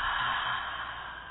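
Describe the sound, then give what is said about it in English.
A slow, deep breath in and out during a guided breathing exercise, a soft airy rush that holds steady and then gradually fades, with no talking. “So as you breathe in, just release the energy out, that with which you're done with.”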